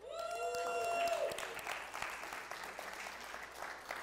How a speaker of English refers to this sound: I'm holding up the applause sign in case you didn't know what that motion was.